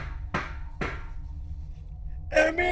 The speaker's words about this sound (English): I can hear something calling from the spirit realm. Wait, no, it's someone knocking on a window. That window over there.